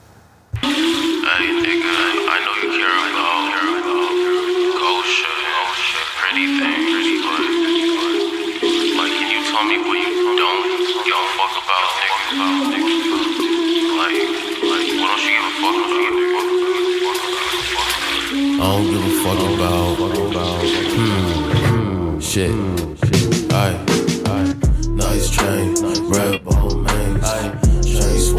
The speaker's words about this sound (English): this is his number one song. This song got 160 million streams on Spotify right now.